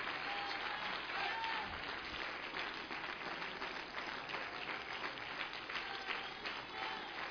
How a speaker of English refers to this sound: Could you stand all over this place and give a hand clap to God that says, thank you for a covenant. Thank you for a covenant. Thank you for a sign.